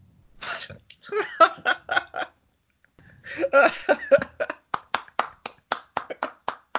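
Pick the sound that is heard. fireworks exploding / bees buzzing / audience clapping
audience clapping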